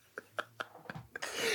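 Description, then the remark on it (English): A stifled sneeze as a person tries to hide it: a handful of short, muffled catches in quick succession, then a sustained breathy hiss as the air escapes. It is fairly quiet, with no talking. “You were trying to hide your sneeze.”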